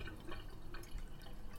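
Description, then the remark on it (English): Tea being poured out, a quiet, steady trickle of liquid with faint drips, heard alone, with no talking. “And when it stops steaming, she picks it up and pours it out.”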